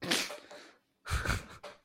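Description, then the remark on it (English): A person who has fallen asleep snores, two rough, noisy snorts separated by a short pause, the second ending in a brief extra rasp. No one speaks. “I heard snoring earlier.”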